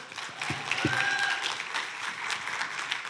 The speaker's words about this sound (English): So give her a round of applause, y'all.